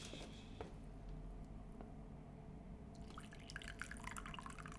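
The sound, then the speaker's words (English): Coffee is poured into a cup as a refill, a steady low trickle that turns splashier and brighter toward the end as it keeps flowing. Fairly quiet, with no talking. “Of course, it's water being poured out from a container.”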